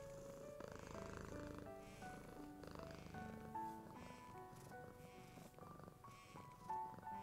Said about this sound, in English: that the sound of the purring can lower your heart rate, lower your blood pressure, reduce anxiety, and put you in a state of total relaxation. So let's relax here for a few minutes with our cat.